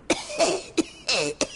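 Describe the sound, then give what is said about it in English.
Close, dry coughing: three sharp barks alternating with two longer, raspy, wheezing hacks in quick succession, with no talking. “He's got a cough and won't be able to make rehearsals tonight.”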